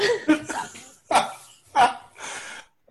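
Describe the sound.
A person mimics a dog barking, with several short, loud woofs spaced unevenly, mixed with breathy, laugh-like vocal sounds.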